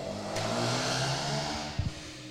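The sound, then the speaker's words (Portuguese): A motorcycle passes by, its engine a loud, steady drone with shifting pitch as it revs, followed by a couple of brief low thumps near the end. No one speaks. “Espera essa moto passar.”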